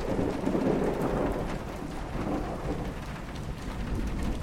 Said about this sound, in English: Sometimes you can watch a storm come slide across the prairies all day long, see it forming in the distance and drawing ever nearer, until suddenly you're inside it, and all you can do is weather the storm until it passes.